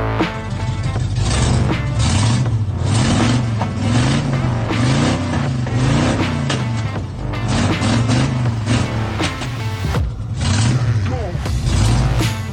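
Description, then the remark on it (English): A 1986 Chevy S10 pickup with a 305 cubic inch small block Chevy engine revs loudly, its pitch climbing and falling in a steady rhythm of repeated throttle blips, about one per second, for the whole stretch. “That's his 1986 Chevy S10 with a 305 cubic inch small block Chevy.”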